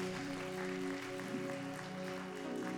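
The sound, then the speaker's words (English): An audience claps in a steady, dense wash of applause that carries through the whole moment, with sustained low keyboard tones humming underneath and no one speaking. “Yeah, yeah, y'all can clap for that.”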